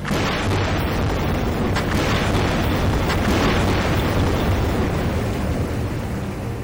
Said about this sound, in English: That is seismic surveying. It's a process that allows companies to essentially locate spots on the ocean floor where they can drill for fossil fuels. So you'll have boats with about 30 or 40 air guns that'll all go off at once.